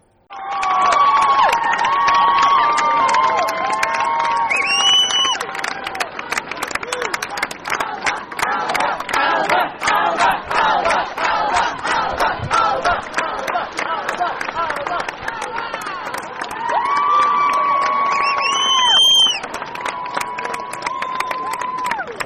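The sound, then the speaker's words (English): A large crowd in the square at Dublin Castle cheers and claps continuously as a prominent Together for Yes campaigner arrives while vote results become known, with dense rapid applause under a roar of voices, rising shouts and occasional high whistles, loud throughout. “the whole place erupted in cheers. They could barely cross the square for the people thronging them and clapping.”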